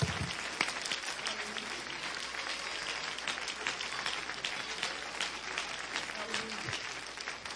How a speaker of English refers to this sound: Clap your hands and give the Lord great praise.